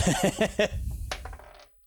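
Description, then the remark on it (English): Dice rolled for a stealth roll clatter across a hard tabletop, a quick burst of sharp rattling clicks followed by a few lighter taps as they settle and stop. “Me is the dice that didn't give me a two.”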